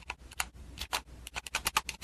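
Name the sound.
typing on a keyboard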